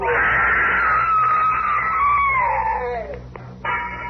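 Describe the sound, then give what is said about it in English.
A woman's loud, piercing scream rings out, holding for about three seconds as its pitch slowly slides downward, followed by a short pause and a brief second cry. “I never heard that scream.”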